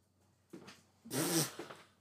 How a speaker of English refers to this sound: Fucking dog.